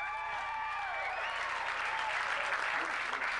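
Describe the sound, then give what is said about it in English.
Single audience members break into sustained applause with scattered cheers and whistles when asked to answer by applause, loud and dense throughout the few seconds, with no speech over it. “Single people have so much hope. They always cheer.”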